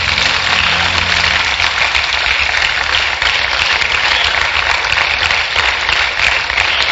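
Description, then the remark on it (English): An audience at a church service claps unto the Lord in a dense, steady burst of applause that stays loud and unbroken for several seconds, with a low rumbling hum underneath and no voices heard. “Clap unto the Lord.”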